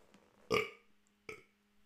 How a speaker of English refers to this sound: Let me burp.